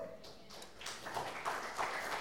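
Brief, fairly quiet applause from an audience in a church: a dense, steady patter of many hands clapping with no clear rhythm, lasting a couple of seconds with no one speaking over it.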